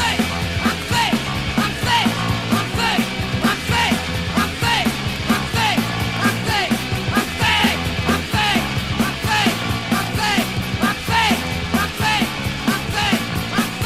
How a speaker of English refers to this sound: At one point, they posed so successfully as a skinhead oi punk band that they got themselves on a genuine oi compilation with a song consisting of nothing but the phrase, "I'm thick," shouted over and over 60-some times.